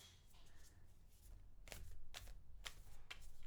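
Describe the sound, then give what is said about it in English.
Crisp riffling of an oracle card deck being shuffled, with several quick bursts of papery flutter in an uneven rhythm over a low background hum. “Yep, you can hear me shuffling.”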